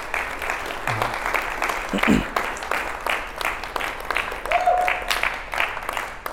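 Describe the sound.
A church audience applauds a panel that taught on marriage, a dense wash of many hands clapping throughout, with a few brief cheers or voices rising above the crowd noise.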